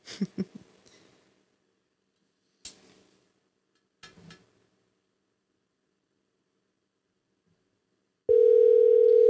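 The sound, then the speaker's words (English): A loud, steady electronic ringback tone starts suddenly near the end and holds for about a second, as an outgoing phone call rings. It follows a few faint taps and handling noises. “Is it ringing? It's ringing.”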